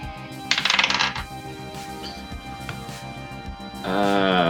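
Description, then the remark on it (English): Dice rattle and clatter across a table in a quick burst of bright clicks lasting under a second, a roll for a perception check, over a steady, quiet musical backdrop. “The roll perception.”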